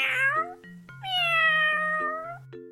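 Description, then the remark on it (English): A cat meows twice, clear: a short falling meow, then a long, drawn-out wavering one, with soft steady musical tones playing underneath. “Cats, they meow.”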